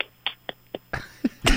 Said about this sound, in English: Are those your little fingers snapping? Is that what I heard? Little sausage nubs.